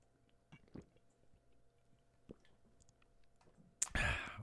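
Someone drinks the last of their water: a few soft, wet mouth clicks in near silence, then a loud slurping gulp right at the end.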